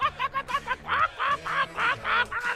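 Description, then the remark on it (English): A duck call quacks in a rapid series of about a dozen nasal, honking bursts, short and quick at first, then longer and louder, prominent with no talking. “You already know duck calls all day.”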